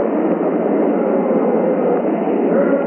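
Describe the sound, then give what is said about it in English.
The rocket engines of the Apollo 11 launch roar at liftoff in a loud, steady, unbroken rush of noise, dense and rumbling with a muffled, narrow-band tone, holding constant from start to finish with no voices. “6, 5, 4, 3, 2, 1, 0, all engine running. Liftoff, we have a liftoff.”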